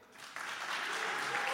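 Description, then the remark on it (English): An audience breaks into a round of applause as a vote on which decision was worse. It builds quickly after a quiet start and holds as a dense, steady wash of clapping, with a faint murmur of voices mixed in. “So, by a round of applause, what is a worse decision?”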